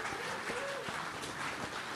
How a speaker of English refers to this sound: Let's clap it up for UU Journalism.